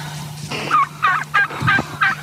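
A turkey gobbles in a rapid run of loud, warbling bursts, five or so quick throaty pulses in a row, over a steady low hum.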